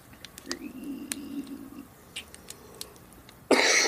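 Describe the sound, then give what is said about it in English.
One sharp, loud cough from a man bursts out near the end after a few seconds of near-silence broken only by faint ticks and soft rustling. Nobody speaks. “Her dad coughs, just like he did.”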